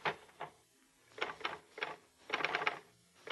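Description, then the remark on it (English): A portable typewriter resting in a lap to deaden noise and vibration is typed on after a sheet of paper is inserted, with irregular bursts of sharp clacking keystrokes and short pauses between clusters, moderately loud, with no talking. “You insert a sheet of paper into the portable. Put it in your lap to deaden the noise and vibration.”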